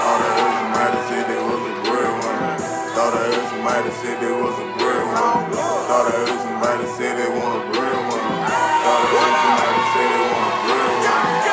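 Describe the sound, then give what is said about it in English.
A large audience cheers and claps loudly and continuously, with whoops and shouts rising out of a dense, sustained wall of applause that swells slightly toward the end, as comedian Karlous Miller is introduced. “Y'all start clapping up for my dog. You done seen it on MTV, BET, make some noise for Karlous Miller!”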